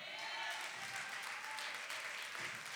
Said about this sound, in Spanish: Alguien alaba a Dios con sus palmas. Aquí estamos en la iglesia. Aquí estamos en la iglesia. Denle un fuerte aplauso al Señor con el corazón.